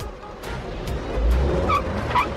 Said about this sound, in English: Hey, it's going backwards! I know, all right? My cab's broken and only going reverse. So I'm bringing it to the shop.